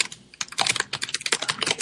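Rapid, irregular clicking of keys on a computer keyboard, close and fairly loud, a steady flurry of keystrokes with no voices.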